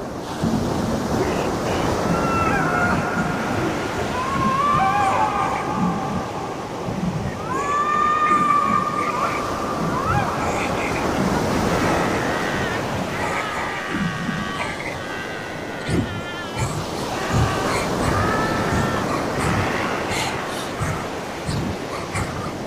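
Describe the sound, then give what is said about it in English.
Loud, roaring sea waves surge and crash continuously, a thick wash of surf and wind, with faint wailing, tonal cries rising and falling over the din. “Her fearful eyes bulged out of an ashen face, and her open mouth delivered a silent scream that merged with the cacophony of painful cries, ritual chants, and the elated roar of a bloodthirsty sea.”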